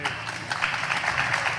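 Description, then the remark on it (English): Steady audience applause for the mayor after his remarks, a dense wash of many hands clapping at an even, loud level throughout, with no distinct individual claps standing out and no voices on top. “Keep that applause going for the mayor's leadership, also the support he gets from our city commissioners, our administrators, and staff.”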